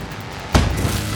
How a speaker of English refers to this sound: A loud clank and deep thud echoed as the bike crashed into the front door.